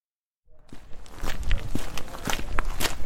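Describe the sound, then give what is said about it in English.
Footsteps walk steadily down a long accessway to a back section with a house bus in the Ohui Beach area after a moment of silence, a regular series of soft, crunching thuds that grow slightly louder, with no voices. “And the following day, I was walking down a long accessway to their back section in one of the nicest house buses I've ever seen,”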